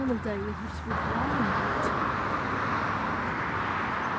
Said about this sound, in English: warn us that there's vehicular traffic ahead.